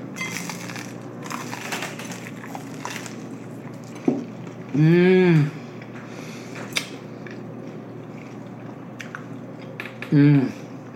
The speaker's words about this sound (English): Ooh, it's crunch. Ooh, you guys got to hear the crunch. Like, how are they going to hit the crunch as you dip it in cheese?